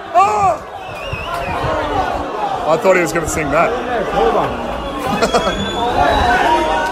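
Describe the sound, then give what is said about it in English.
A lively crowd chatters, cheers and calls out for Francis Leach in a steady, dense babble, with bursts of raised voices rising above the din. One person speaks over the noise. “The crowd is gone berserk for Francis Leach. He is going to get cheered out of here.”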